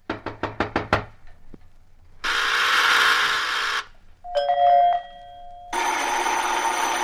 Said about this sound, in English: Annoying, isn't it, the repeated ringing of your doorbell?